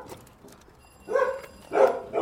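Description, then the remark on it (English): Three muffled barks from two Labradors behind a glass door, moderately loud, spaced unevenly over a couple of seconds with quiet room tone between them. “Two Labradors through the glass,”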